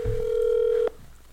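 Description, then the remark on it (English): A phone call being placed: a steady, fairly loud electronic telephone tone holds for almost a second, then cuts off abruptly, leaving faint background noise. “Let's get him on the phone.”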